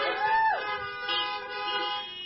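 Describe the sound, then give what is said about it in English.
Several car horns honk together in answer to a preacher's call for a honk during a church service, a loud, sustained chorus of overlapping blasts that hold steady for a couple of seconds, with one horn dipping in pitch near the start. “If you believe that nothing is impossible with God, just give me a shout out, an amen, or give me a honk out there and let me know.”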